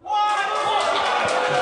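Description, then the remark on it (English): A loud, sustained burst of crowd noise: applause mixed with booing from an audience, a dense wash of clapping and voices that starts abruptly and stays strong throughout. “I hear more applause than booze.”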